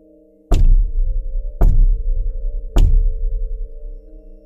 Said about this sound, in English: The other silence was interrupted by 3 loud knocks from the other side of the steel blast door.